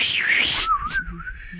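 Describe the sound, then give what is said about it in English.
A person imitates a wizard bird call: a breathy, hissing swoop followed by a steady, gently warbling whistle that wavers in pitch for about a second. “If we could both do a wizard bird impersonation.”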